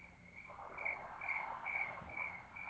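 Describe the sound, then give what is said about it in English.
A chorus of frogs calls outdoors, high trilling pulses repeating at a steady, quick rhythm over a dense background hum of more calls, with no voices. “It's frogs. Really? That's what frogs sound like.”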